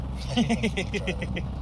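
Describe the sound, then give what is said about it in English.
Steady low road-and-engine rumble from inside a moving car, with a voice making short, rhythmic vocal sounds over it. “We're in a car moving.”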